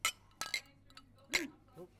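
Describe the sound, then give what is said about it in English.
Beer glasses clink together in a toast among a group of men, three or four sharp, bright chinks in quick irregular succession, with faint murmuring voices in the background. “Cheers, fellas.”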